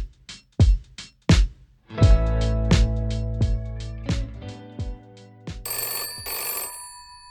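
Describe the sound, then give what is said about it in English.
A mobile phone rings with a bright electronic ringtone: a few sharp tones, then a sustained melodic burst and two buzzy chirps near the end, loud, with no one talking. “Wait, why is my phone ringing on the podcast?”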